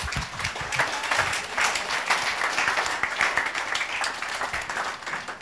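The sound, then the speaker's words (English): A church audience breaks into steady applause for a woman, many hands clapping in a dense, continuous patter that holds at an even loudness for several seconds without any voices rising above it. “Clap for her.”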